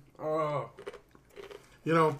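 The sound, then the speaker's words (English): Chewing of little crunchy snacks with soft clicky, crunchy bites, bracketed by two drawn-out voiced hums of appreciation. No words are spoken. “I'm going to go back to these little crunchy things real quick.”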